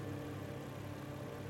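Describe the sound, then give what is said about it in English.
A car with a broken muffler idles in a street, its low, rough engine rumble holding an even level throughout with no pauses or revving, and no voices present. “A car that sounded like its muffler had fallen off sometime during the Vietnam War idled in the street.”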